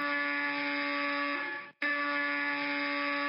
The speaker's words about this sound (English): The buzzer of Scrooge's door, the buzzer that had been broken for more than 10 years, suddenly began going off repeatedly.